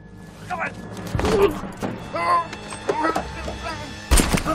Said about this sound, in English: And then that's where, he gets shot. And it is like a really gruesome gunshot. Yeah. That you don't typically see. Brutal. Yeah, it's pretty brutal.